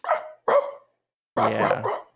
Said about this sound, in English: Can you hear the dog freaking out in the room behind me? Do you hear the dog? Is it whimpering?